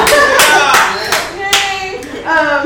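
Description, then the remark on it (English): A crowd claps in a steady rhythm, about seven sharp beats in quick succession, loud, with voices cheering and whooping underneath. “As, yeah, I get to clap, you can clap!”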